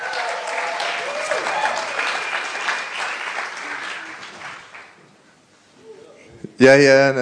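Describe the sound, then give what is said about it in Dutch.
A crowd applauds steadily for about five seconds, the clapping dense and loud before fading out, followed by a brief pause and then a man's voice speaking. “Dus we kunnen een warm applaus geven”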